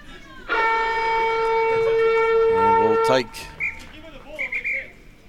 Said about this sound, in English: Siren will sound before they take the tap here.